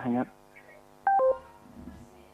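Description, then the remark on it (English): Electronic feedback on a phone call being hung up through an Alexa device: a steady tonal hum with a short burst at the start and a pair of sharp, loud beeping tones about a second in, fading back to a low buzz. “Wow, got lots of feedback there.”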